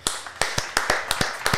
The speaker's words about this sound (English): Let's clap it in for Tom Brady.